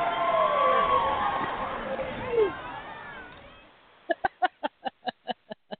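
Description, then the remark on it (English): A loud crowd-cheering sound effect, played on a show to welcome a guest, a dense roar with shrill whistle-like cries, fades after a few seconds into a run of about nine sharp, evenly spaced rhythmic hits. “Let's play some cheering.”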